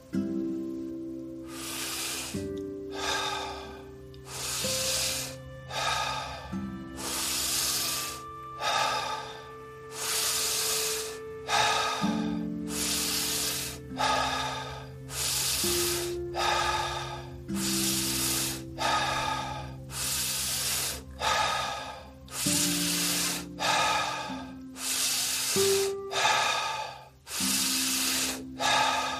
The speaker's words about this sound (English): Continue breathing. It doesn't matter how many breaths exactly. Just make sure you get around 30 to a minute in breathing.